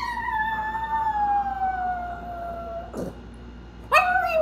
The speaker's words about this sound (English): Reggie is this 9-pound chihuahua, and she has a lot of feelings about everything. So, like, this is what she sounds like after I've left the house.